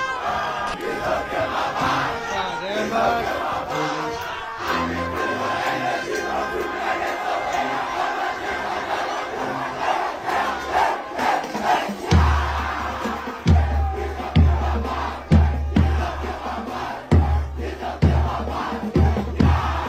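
A large group of South African high school students chants a war cry in unison, loud rhythmic shouting with heavy stamps or thumps pounding in the second half.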